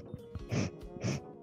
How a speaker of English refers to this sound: No, you can't mute, though. You have to stay unmuted, and you have to sniff down the mic. Okay? For, like, the whole thing. Go like that.